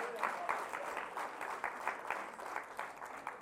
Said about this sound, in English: Man, come on, give these fine men of God a hand clap of praise.